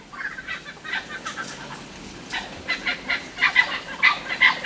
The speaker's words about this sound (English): Oh, it's blue-winged kookaburras. Yeah, going crazy. They really get into it.